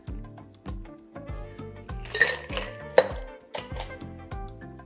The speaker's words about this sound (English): Keeping this one nice and simple, then all we've got to do is give it some ice, give it a shake, and we're away. And double strain that into your cocktail glass.